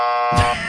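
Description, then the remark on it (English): A loud, harsh buzzer blares with a steady electronic tone, joined midway by a low thump and noisy burst before the buzz carries on slightly quieter. “There's one for Edge, too.”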